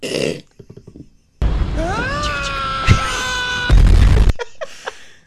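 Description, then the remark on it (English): A screaming sound effect: a loud, drawn-out scream rises in pitch and holds for a couple of seconds, then breaks into a harsh, noisy blast before cutting off. Brief vocal sounds come before and after it. “Got it. Mail scream.”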